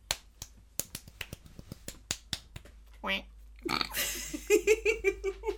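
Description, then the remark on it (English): A run of sharp, rhythmic finger-like snaps, then a person imitates a duck with raspy, nasal quacks that end in a quick string of short, bouncing honks. “You just look so pleased with your little quack.”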